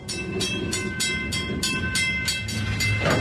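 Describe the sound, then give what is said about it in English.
A train rolls past on the rails in Lac Megantic with a steady, rhythmic clatter of wheels over joints, loud, accompanied by a low rumble and faint high tonal squeal. “About 5 months later, in December 2013, the scorched earth of Lac Megantic was once again giving passage to trains.”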